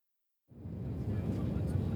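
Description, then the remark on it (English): After a brief silence, a steady, low engine hum inside the cabin of a plane bound for Jakarta fades in and holds at an even level, a dense rumble with a soft hiss on top. “After a whirlwind of several hectic days, his life totally upended, Eddie found himself on a plane for Jakarta.”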